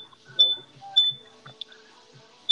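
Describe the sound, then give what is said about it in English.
A smoke detector gives a few sharp, high-pitched beeps at irregular intervals, clear, over faint murmuring voices in the background. “That's a smoke detector.”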